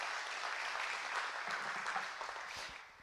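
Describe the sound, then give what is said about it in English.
A crowd applauds steadily, a dense wash of many hands clapping at an even, moderate level for the whole stretch before it starts to thin out at the end. “And yeah, you can clap for that.”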